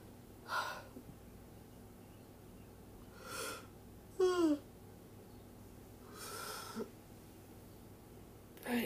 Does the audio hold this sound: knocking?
no